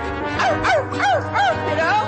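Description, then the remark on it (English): A woman imitates a dog barking, giving about five quick, evenly spaced yelping barks that drop in pitch, fairly loud. “Oh, she's barking like a dog.”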